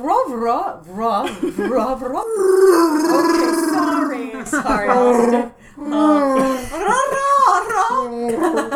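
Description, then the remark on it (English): A person voices a long, warbling Wookiee-style growl and howl, rising and falling in loud, gravelly bursts with a brief pause midway. “Yeah, in fact, probably all you guys maybe kind of speak Wookiee.”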